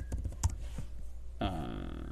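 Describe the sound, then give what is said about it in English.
A few quick keyboard clicks tap out in the first half second as someone types during a Zoom class, followed by a steady hum with a brief tonal sound joining near the end. “So that's why I'm typing.”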